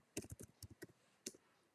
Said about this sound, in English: Oops. Sorry, I was just typing a wee message.